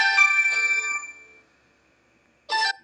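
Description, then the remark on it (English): A mobile phone ringtone plays alone: a bright electronic chime rings out and fades over about a second, then after a short pause the tone starts again, fairly loud. “I don't know if y'all heard that phone ring, but I'm pretty sure y'all did.”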